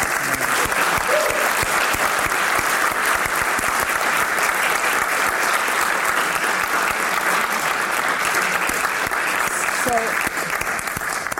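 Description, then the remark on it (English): Sustained applause from an audience, a dense, steady wash of clapping that stays loud and even for the whole stretch, with a few faint voices and whoops mixed in. “And I'd like to invite the audience just to join me in a round of applause because I've really enjoyed it.”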